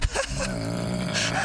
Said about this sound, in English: That's is that what I think it is? That's somebody snoring